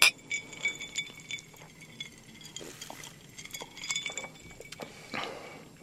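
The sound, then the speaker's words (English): Glasses of a pale green, minty alcoholic drink clink together in a toast, a bright ringing chink at the start followed by a few lighter clinks and rattles, moderately quiet, with no talking. “Well, cheers. Cheers.”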